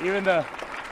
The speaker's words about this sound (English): The truth is, I actually love and respect every single fucking person up here, man. Give them a round of applause, bro. Every single person up here.